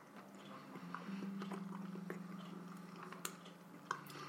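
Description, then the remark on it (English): Someone chews crunchy, salty aged cheese that glimmers from its salt and calcium content, with irregular crisp crunches and clicks over a steady low hum and no talking. “That salty crunch.”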